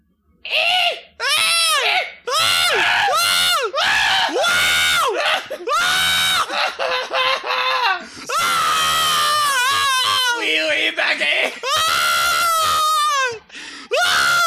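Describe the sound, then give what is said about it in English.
Children scream loudly and repeatedly in a treehouse in high, shrill bursts, several voices overlapping, with brief gaps between the shrieks and no talking. “As Jimmy arrived at the treehouse, he heard familiar screams.”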